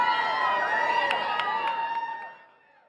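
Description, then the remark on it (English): A crowd of fans roars and cheers as Ringo Starr appears to sign some of his artwork, many high excited voices shrieking and overlapping at once, loud and sustained for a couple of seconds before fading quickly away. “And when Sir Ringo made an appearance to sign some of his pieces, the crowd roared.”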